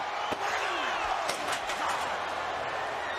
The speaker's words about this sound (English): Jericho from behind with a steel chair, and down went Michaels.